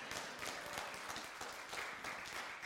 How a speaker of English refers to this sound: I love it when you clap. I've got so old, that gives me a chance to get my breath. So thank you for that.